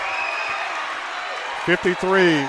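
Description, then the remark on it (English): A small basketball crowd roars steadily as a player goes to the line for two free throws late in the game, then loud cheering voices break through in two short bursts and a longer rising shout toward the end. “And the crowd comes to life.”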